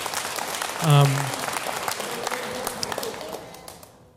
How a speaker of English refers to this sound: Yeah, we can clap. That's an appropriate time. Yeah, clap.